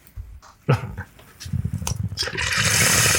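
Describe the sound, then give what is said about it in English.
Water pours steadily into a bong, a rising splashing hiss that fills the last second or so, after a few soft knocks and low rumbles. “Oh, it needs more water in here.”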